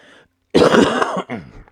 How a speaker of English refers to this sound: Oh, boy. Almost at the end of this podcast, and I cough on me. I did the whole wrestling one, didn't cough, but I knew it was going to happen.